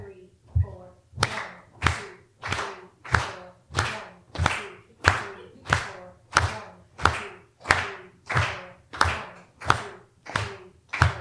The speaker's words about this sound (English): Then we're just going to clap for every beat. All four beats.